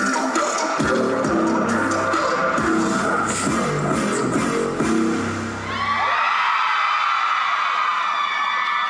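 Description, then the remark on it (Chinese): A large crowd of fans screams and whoops loudly over thumping live music as a singer dances and sings his first solo dance song on stage; the high, shrill screaming swells and continues alone after the music cuts out. “亦在现场卖力跳唱，令粉丝尖叫声连连。”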